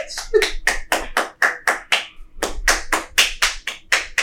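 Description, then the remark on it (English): A steady run of hands clapping, about four sharp, bright claps per second, with a brief pause midway before the clapping resumes at the same even pace. “He's still clapping.”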